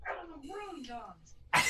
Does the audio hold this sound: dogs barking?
yes